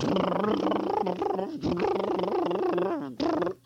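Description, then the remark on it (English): A loud, wobbling squeal of air escaping from a deflating monster, like a deflating balloon, sputtering on in three long bursts with brief gaps before trailing off. No one speaks. “He's deflating. All the air is coming out of him.”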